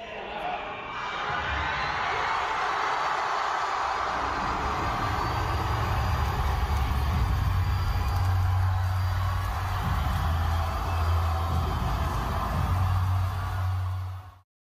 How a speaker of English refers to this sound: So all that was a massive round of applause, a great ovation as someone was being introduced to the stage to an event that just took place recently down, I believe, the Southwestern United States, a Turning Point USA event.